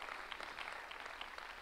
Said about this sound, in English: If you believe that, give him a big round of applause in this place.